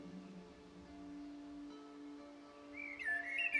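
A blackbird's fluting whistle rises in a short, bright phrase near the end, over a soft, sustained musical drone of steady low tones.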